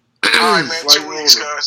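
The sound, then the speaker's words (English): A man gives a loud, exaggerated cough with a raspy voiced edge, two or three sharp bursts in quick succession, sounding half like throat clearing. “I had to cough over that virus she was trying to send.”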